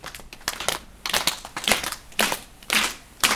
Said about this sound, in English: Now a quiet applause.